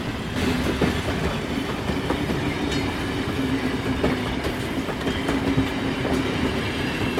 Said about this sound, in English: Train.